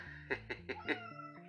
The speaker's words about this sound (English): This is John's cat, Bucky. He always manages to show up when we're recording these things.